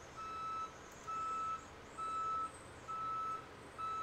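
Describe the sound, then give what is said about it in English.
A truck's reversing alarm beeps steadily outside an open window while gravel is put in the driveway of the house next door, about one long tone per second, four or five in a row over a low engine rumble, slightly muffled. “I have the window open, and they're just, like, putting gravel in the driveway for the house next door.”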